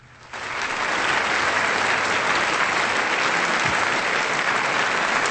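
An applause sound effect: a crowd bursts into steady, loud applause after a brief quiet start, many hands clapping in a dense, even roar that holds at full strength to the end.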